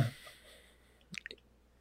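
A quick sip of water: a short wet slurp and gulp amid near silence, lasting well under half a second.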